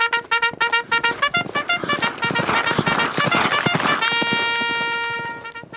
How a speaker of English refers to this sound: The thundering of hooves split the silence as our horses galloped through the bleak landscape.